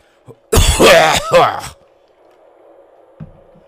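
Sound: coughing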